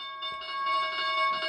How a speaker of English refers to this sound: Oh, crap. That's an alarm that I have, but I'm busy.